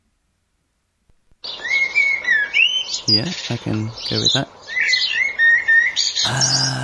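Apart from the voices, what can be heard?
blackbird song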